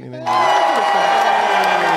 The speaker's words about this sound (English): do we have the little crowd clapping?